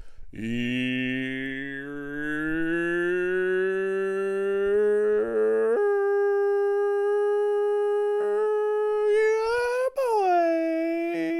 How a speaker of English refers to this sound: I'm gonna murder those fucking dogs.